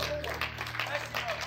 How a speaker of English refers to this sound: But clap your hands for God.